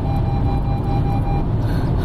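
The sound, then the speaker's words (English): Car tires rolling rhythmically over road lane markings while driving along a winding road, heard from inside the car as a steady low rumble with a faint high whine, continuous and fairly loud, with no one talking. “to that beat, that's what it sounds like when I'm going over the lines.”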